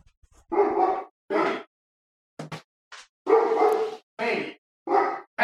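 A dog named Buster barks repeatedly in short, loud bursts, with a few brief sharp yips between the longer barks and short pauses separating them.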